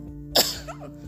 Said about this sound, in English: I've got to sneeze. One moment.